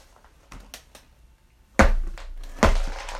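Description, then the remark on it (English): A few light taps, then two heavy boot stomps land about a second apart as someone stomps on an object to break it, each a loud, deep thud with a cracking edge that rings out briefly. No one speaks. “Got my stomping boots on.”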